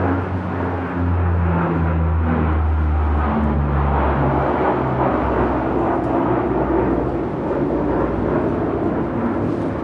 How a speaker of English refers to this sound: Oh, look, right now, here comes, well, you can't see, but right now there's something that looks like one of those old China Clipper propeller planes from the 30s flying overhead.